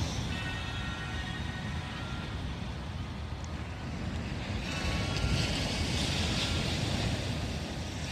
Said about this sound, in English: Yes, the sounds of those waves are real, my friend. This is not a sleep machine. But how easily that white noise can take you away to relax, to dream, to just be one with yourself.